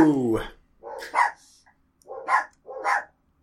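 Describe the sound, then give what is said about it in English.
A dog barks outside in short, sharp bursts, about three or four spaced roughly half a second apart, moderately loud, opening with a higher, falling yelp. “It's really bright outside, so some dog's gonna fart some shit, so then the other dog is like, oh, there's some shit happening!”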